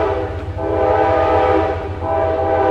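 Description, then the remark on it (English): Trains pass on either side of the listener, loud and steady, with a sustained blaring horn tone riding over the low mechanical roar the whole time. “There's a train passing on either side of me.”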